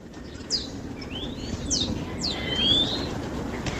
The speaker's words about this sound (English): one of the tweeting birds in the background